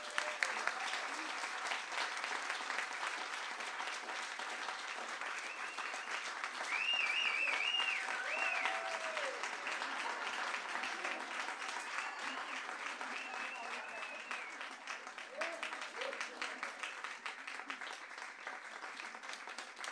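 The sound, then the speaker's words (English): Steady, sustained applause from an audience fills the whole stretch, a dense crackle of many hands clapping at an even level, with a few faint tonal whistles or cheers rising briefly through it. “Let's please give them a warm round of applause.”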